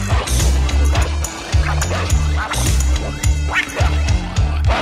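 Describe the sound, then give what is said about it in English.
A small dog named Snuggles yaps and barks repeatedly in quick, high-pitched bursts, loud, over a steady low rhythmic musical backing. “He was a little dog named Snuggles.”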